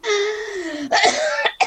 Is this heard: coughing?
yes